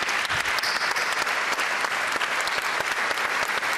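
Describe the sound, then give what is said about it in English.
An audience claps steadily and loudly to celebrate a football team after the World Cup, a dense wash of many hands with no pauses, sustained for a few seconds with no voices standing out. “Afterwards, but this team deserves to be celebrated and deserves to be listened to, and I'm going to give them again a big applause, and I hope you will join me.”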